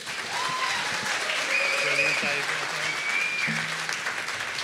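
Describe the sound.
Steady, dense audience applause fills the room, a broad wash of clapping from many hands that holds at an even level throughout, with faint voices and a few cheers mixed in.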